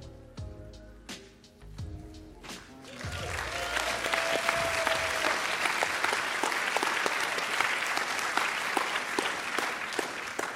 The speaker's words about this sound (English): I didn't want to cut off your applause there.